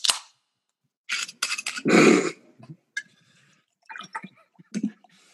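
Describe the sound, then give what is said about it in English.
A beer is cracked open with a sharp hiss, then poured into a glass in gurgling, foamy bursts, followed by faint fizzing and a few light clinks, fairly clear. “I can't help but laugh as I'm pouring my beer”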